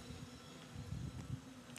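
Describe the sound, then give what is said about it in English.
A low, steady buzzing drone, like a swarm of bees, hums quietly and continuously with a slightly rough, wavering texture and a faint airy hiss over it. No one speaks. “I feel like I hear a bee swarm.”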